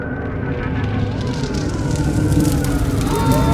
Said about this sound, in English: I woke up when I heard the sirens.